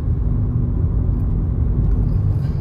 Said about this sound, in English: I'm really glad this VW Passat was in such a hurry to get around me